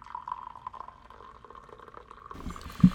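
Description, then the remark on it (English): Someone takes a big drink of water, a steady wet gurgle of liquid ending in a couple of heavier, louder gulps, with no talking. “here with my good friend and co-host, who's taking a big old gulp of water right now.”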